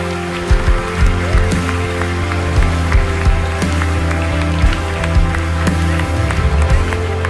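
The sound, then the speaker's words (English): A church audience gives the Lord a round of applause with steady, scattered clapping that runs throughout, layered over a sustained low musical tone, with a few sharper claps standing out. “Come on, let's give the Lord a big round of applause.”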